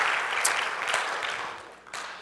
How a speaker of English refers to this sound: Let's give our visitors a good round of applause. Thank you for being with us.